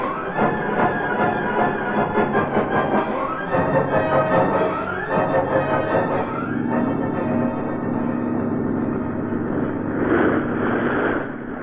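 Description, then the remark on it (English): A boat motor sputters and revs unevenly for a few seconds, then settles into a loud, steady, droning hum with a low rumbling tone that continues without any talking. “Start the motor on that boat!”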